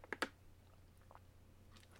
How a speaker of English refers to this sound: You know, I better clean off the old pipes, you know, get a sip of water here.